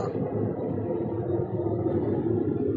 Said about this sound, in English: Oh. Hold for plane. It's amazing how loud those planes are.